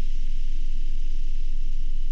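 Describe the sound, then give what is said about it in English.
A steady, continuous hiss fills a car after the key is turned in the ignition and the motor fails to turn over, unbroken for a couple of seconds over a low, constant hum, with no voices. “But there was a hissing sound. No smell, just a hissing sound.”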